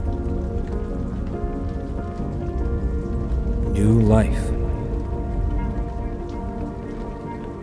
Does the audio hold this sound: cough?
no